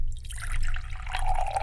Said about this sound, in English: Here you go. I don't know how you take yours. Straight out of the pot. Keep pouring the coffee. In a big cup.